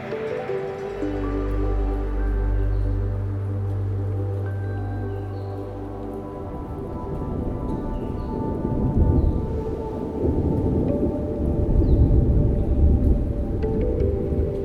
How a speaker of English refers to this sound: The rain sprinkles a little harder, forming a relaxing, steady rhythm.